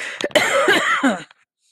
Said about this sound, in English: I'm going to cover the microphone because I need to cough for a minute.